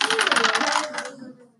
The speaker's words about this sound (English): So let's roll against animal handling. So roll your dice.